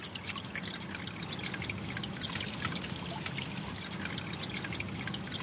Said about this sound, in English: So it's still here, but it's this hole in the brick wall drains off the stormwater. You can hear it.